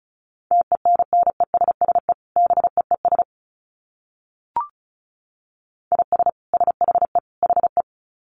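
Fast Morse code at 35 words per minute: a single mid-pitched tone keyed on and off in quick dits and dahs, sending two bursts separated by a pause with a brief click between them.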